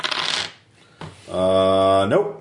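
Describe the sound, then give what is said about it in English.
A quick burst of dice rattling and clattering, followed after a short pause by a sustained hummed vocal tone that slides upward at the end. “so I'd be rolling 46.”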